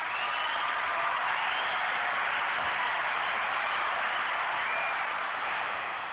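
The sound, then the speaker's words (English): A crowd cheers and yells in a steady, dense roar that holds at an even level for about six seconds, sounding thin and tinny with no single voice standing out. “We got a little few people yelling for you”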